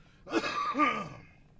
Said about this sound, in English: He has to clear his throat.